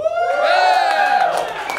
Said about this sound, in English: If you want the Sizzler Fart to win, cheer.